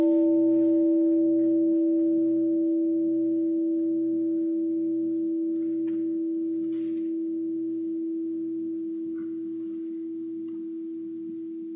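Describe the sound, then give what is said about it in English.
A meditation bell rings once and hums on, its steady tone slowly fading over about twelve seconds with a soft, rhythmic wavering pulse underneath. No one speaks. “We have a sound of the bell.”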